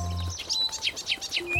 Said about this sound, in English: I hear birds! Birds? Happy Hippo can hear the birds. Can you hear them? Yes! Birds! Birds!